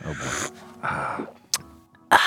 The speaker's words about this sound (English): Sip your coffee.